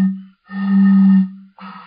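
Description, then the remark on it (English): A voice imitates a steam train with sustained, hooting vocal tones: a short burst, a long drawn-out blast, then another brief one, fairly loud, with no other sounds. “It's an impression of a steam train.”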